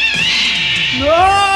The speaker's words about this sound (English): A few slow-paced footsteps are heard, and then another blood-curdling cat scream.